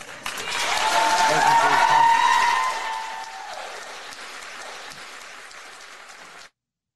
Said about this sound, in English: So obviously, as you can tell, it drew a lot of applause from the parents and other residents in the meeting.